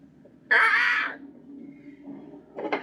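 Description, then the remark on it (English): A loud, harsh crow caw rings out for about half a second, followed by quieter murmuring ambience and then a second shorter, rougher caw at the end. “Did you find crow ambiance? Of course I did.”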